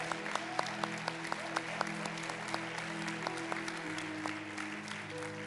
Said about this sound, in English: Come on, can we give the Lord a big clap of praise?